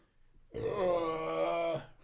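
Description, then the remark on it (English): A single long, guttural burp, low-pitched and rumbling with a rough, buzzy tone, held for about a second at a loud, steady level before cutting off. No talking. “Those sound like good... guttural burps.”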